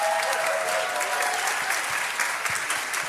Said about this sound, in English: Look out at all of these people. They are going to cheer you on all year. Okay, should we give them a big round of applause? Let's cheer them on.